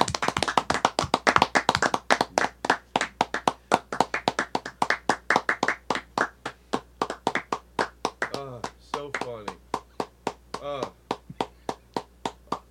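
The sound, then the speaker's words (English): Hand clapping starts as a quick, overlapping burst from several people, then thins into one person's steady, evenly spaced claps, with brief laughter or voices partway through. “It all of us clap, and then it goes down to just me and you,”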